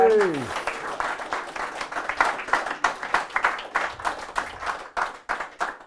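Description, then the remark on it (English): A few people applaud each other in a steady, energetic patter for several seconds, opening with a brief falling vocal whoop before the clapping takes over. “We have another three round of applause for each other.”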